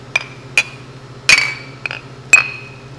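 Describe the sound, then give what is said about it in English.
Beer glasses clink together in a toast about five times in quick, uneven succession at the Alamo Brewing Company brewery. Each sharp tap rings briefly, a few louder than others, over a steady low hum with no one talking. “I mean, we're enjoying some awesome Alamo beer. Cheers. Prost.”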